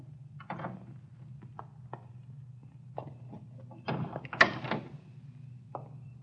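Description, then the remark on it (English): A car door is eased open and gently pushed shut as someone gets out of a car stopped around the corner from a filling station, with soft latch clicks and a muffled thud over a low, steady engine-like hum. The handling is quiet. “We stopped around the corner from the filling station. Easy on the door when you get out.”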